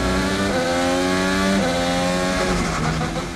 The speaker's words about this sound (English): In a Formula One or any road race, you're going to hear the car shifting up through the gears and down through the gears a lot more often.